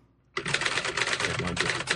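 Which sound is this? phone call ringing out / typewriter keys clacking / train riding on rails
typewriter keys clacking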